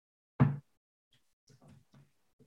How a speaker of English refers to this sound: You're just staring at me as I'm like knocking everything over.